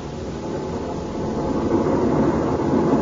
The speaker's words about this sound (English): The motors are revving up now, Mellish.